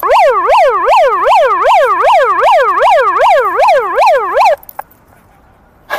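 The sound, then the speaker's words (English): A loud emergency vehicle siren in Boston wails in rapid rising and falling sweeps for several seconds, then cuts off abruptly into near quiet with a few faint clicks. “Let the siren ring in the new era.”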